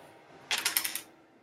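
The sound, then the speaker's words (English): A small four-sided die, rolled as a 1d4 subtracted from a dexterity saving throw, rattles and tumbles across a hard surface: a quick run of about six sharp, bright clicks lasting half a second, then stillness. It lands on 4. No one speaks. “Okay, let's get a pyramid dice.”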